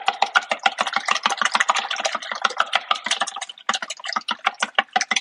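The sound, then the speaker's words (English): A fork whisks a raw egg in a bowl, making a fast, steady run of light clicking taps against the side, with a brief pause before the rhythm resumes. Nobody speaks. “Kind of swish it around a little bit there.”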